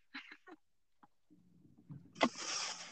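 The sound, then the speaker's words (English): Boats pass on the water, an engine droning and building into a loud, broad wash of motor and churning water near the end, with a few brief knocks and splashes before it. “I went down here initially obviously to like stay away from the noises and stuff because the boats are pretty loud.”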